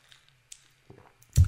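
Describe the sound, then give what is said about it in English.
A sip of diet iced tea: a few faint wet clicks and lip sounds, then a short, louder gulp near the end. No one speaks. “I'll just take a sip of my lovely diet iced tea.”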